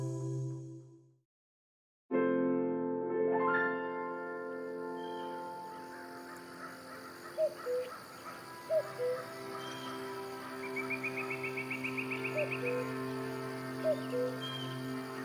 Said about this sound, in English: Once there was a cuckoo bird chattering in the woods